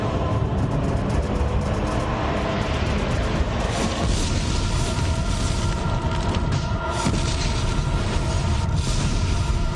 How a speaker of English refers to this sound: It is the nuclear explosion from Terminator 2.